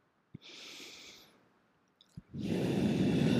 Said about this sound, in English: If you put these two fingers together and just hold these two fingers, I teach them a breathing technique. You're going to breathe in through your nose.